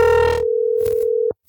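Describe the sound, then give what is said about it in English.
A single steady ringback tone on an outgoing phone call hums for just over a second, then cuts off abruptly, followed by a short quiet gap and a faint click. “These people are going to answer the phone.”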